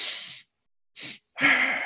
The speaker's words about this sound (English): It is the fastest way that I'm aware of to unload carbon dioxide and shift down the level of stress and increase the level of calm. So it's typically done 2 inhales through the nose and 1 exhale through the mouth. So it looks something like this.